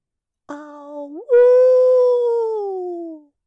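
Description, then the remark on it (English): One long, loud howl by a woman in a meadow: it starts with a short wavering note, swoops upward, then holds and slowly sinks in pitch for about two seconds before cutting off. “She only has 6 howls. She can't do them more than twice or it brings bad juju.”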